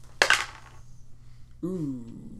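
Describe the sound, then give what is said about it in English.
A quick, bright clatter of dice tumbling onto a hard tabletop during a tabletop role-playing game, lasting only a moment, followed after a short pause by someone starting to speak. “This dice is fire.”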